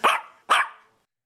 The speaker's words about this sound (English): The small dog sound effect.